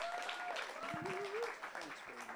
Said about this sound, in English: He's married to one wife. He has three married daughters and eight grandchildren. That also deserves a round of applause.